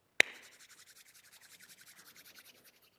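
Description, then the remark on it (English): People imitate rain with their hands: one sharp tap, then a steady, rapid, rhythmic swishing patter with a soft hiss that holds for a few seconds before thinning out. No one speaks. “Lots of good rain going on there.”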